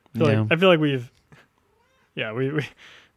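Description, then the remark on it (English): A cat lets out two loud, drawn-out meows, the first long and wavering, the second shorter after a brief pause, with a soft breathy trailing sound at the end. “This kitty's so loud.”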